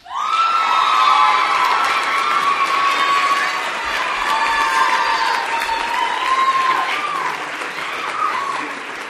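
An audience claps and cheers loudly and steadily for about nine seconds after a department announces its outstanding senior, a dense wash of applause with high whoops and shouts rising above it, easing slightly toward the end.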